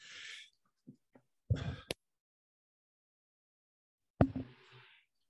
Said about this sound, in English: Sneeze, and wow, that hurts when you hold in a sneeze a little bit.